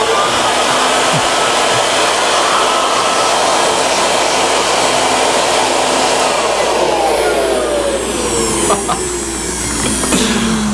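A leaf blower runs loud and steady with a dense roaring whoosh and a motor hum, then its pitch slides downward near the end as it winds down.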